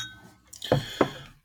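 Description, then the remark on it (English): Two quick clinks of glasses touching during a toast, moderately loud, each leaving a brief bright ring. Nobody speaks. “So here's to you and me. Cheers.”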